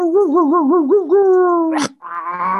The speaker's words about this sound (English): The boys keep growling and snorting. The dog keeps growling and snorting. trying to clear its throat.